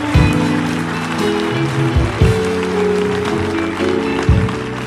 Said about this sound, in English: In Jesus' name, clap for Jesus.